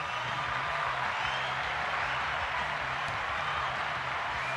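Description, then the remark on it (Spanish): A steady wash of applause, dedicated to people who know how to wash windows, many hands clapping in a dense, even crackle that holds at the same loudness throughout, with a low droning hum beneath it and no voices. “Una vez más a ustedes, les mando un aplauso.”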